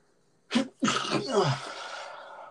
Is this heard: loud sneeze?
yes